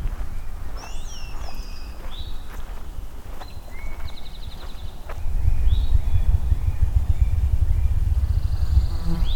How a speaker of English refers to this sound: There's the ruffed grouse again. Really hard to locate where it is. So that drumming is very, very low pitched. Almost more of a sensation than a sound.